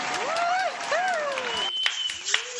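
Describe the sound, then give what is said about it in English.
An audience applauds a guest being introduced, in a steady, dense wash of clapping, with rising and falling whoops of cheering over it. It thins out near the end to a few sharp, separate claps. “Let's just give her a round of applause.”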